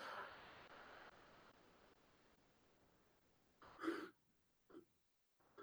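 A breathy yawn around 3 a.m. after a long trip back: a long airy exhale that fades out, then a short voiced groan, followed by a couple of brief soft mouth sounds. No one speaks.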